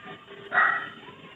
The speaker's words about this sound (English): So is there a dog in your store? Believe so, actually. Oh, my goodness. Yeah, that's a dog.